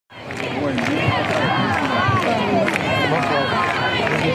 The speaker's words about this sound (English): When the hearse arrived at the church, the coffin was taken out of the vehicle as hundreds in the crowd applauded and chanted, "Navalny, Navalny." Some also shouted, "You weren't afraid, neither are we."